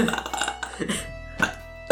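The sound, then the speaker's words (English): A loud, drawn-out burp rumbles for about a second, gravelly and throaty, followed by a couple of short breathy bursts. “That is off one fucking burp, Jesus.”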